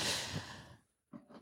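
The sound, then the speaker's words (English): A man gives a long, breathy yawn that tapers off into near silence, followed by two short, airy exhales. No one speaks. “…'s training for a marathon and he's doing a lot of yawning”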